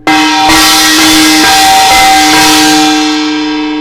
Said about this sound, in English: actually going to play this because I know it doesn't sound very good. But as I play it, pay attention to how you receive it and how do people in general react to it and how did you react to the gong?